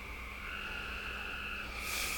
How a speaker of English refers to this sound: Them frogs. They're the frogs. There they are. It's starting to get dark. Yep. It's their time. It's breakfast for them.